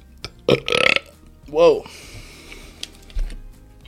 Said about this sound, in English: Whoa. Damn, guys. Coffee burps. I haven't been taking pre-workout for a couple weeks. I've been drinking coffee.